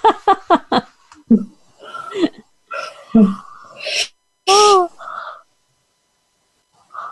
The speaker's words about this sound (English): Oh, excuse me. Oh, my goodness. This is a big one, my dear. I'm yawning my head off.